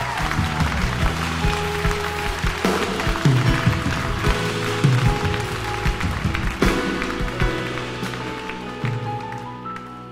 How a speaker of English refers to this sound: I wonder if we can give God a big clap for a moment.